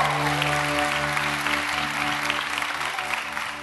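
An audience claps steadily together, a dense, even wash of applause holding at the same loudness for several seconds with no voices rising above it.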